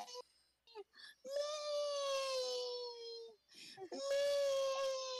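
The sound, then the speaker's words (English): A voice imitates someone loudly bawling and crying after taking one hit, with two long, wavering wails that hold a steady pitch, separated by short sobbing gasps and broken catches of breath. “Fucking just bawling, crying.”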